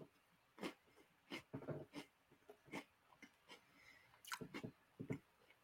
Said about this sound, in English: That's great audio. Just me crunching Oreos.